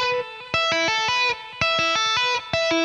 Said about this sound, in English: to tap on the 12th fret, and we're going to do just the pentatonic E minor scale at the 5th fret. So you're going to tap on at the 12th fret, and then you're going to basically pull off to the open string. And then hammer on up to the 5th to the 7th.